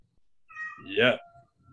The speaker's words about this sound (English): and now his cat's screaming in pain.